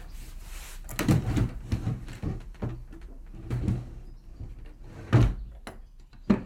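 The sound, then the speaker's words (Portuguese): A wardrobe door is opened by an elderly woman in her house, with a series of wooden knocks, creaks and rattles spread over several seconds, fairly quiet and with no one speaking. “A minha avó abriu um armário e mostrou-me a roupa que queria que lhe vestíssemos quando morresse.”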